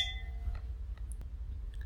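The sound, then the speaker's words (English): Wine glasses holding cabernet clink in a toast at the very start, leaving a brief bright ringing tone that fades fast, followed by a few faint taps and knocks over a low background rumble. “Cheers. Cheers.”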